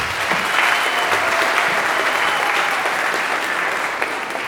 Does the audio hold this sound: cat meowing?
no